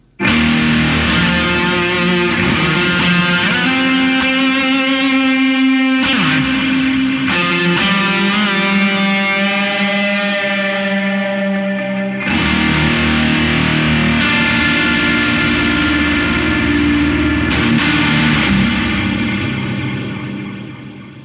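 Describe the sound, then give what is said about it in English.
A loud, overdriven electric guitar rings out with sustained distorted chords, trailed by a noticeable echo effect that repeats and smears the notes, playing alone with brief pauses between phrases. “Also like the way that sounds. Echoes.”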